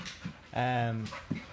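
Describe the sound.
A dog gives a sustained high whine mid-clip, framed by short breathy panting puffs, as dogs play on a floor, with faint human voices in the background.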